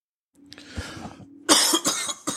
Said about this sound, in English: Choke, you bastard. Yep, COVID. My God. Sorry for all this coughing I've been doing on the show,